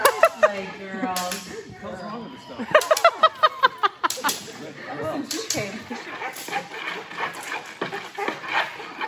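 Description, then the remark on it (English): A female puppy bites and tugs at the top of a jacket, with whiny growls, rustling fabric and a run of sharp snapping smacks, while a person's muffled voice occasionally comes through. “Just watching that last where the dog was biting on the jacket on the top,”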